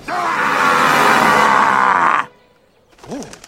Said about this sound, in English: See, but Donkey's actually useful. Shrek even roars to try and get him to go away.